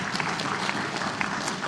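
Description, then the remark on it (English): A crowd applauds the volunteers steadily, a dense, even patter of many hands clapping at once with no pauses or voices breaking through. “Yeah, let's give them a round of applause.”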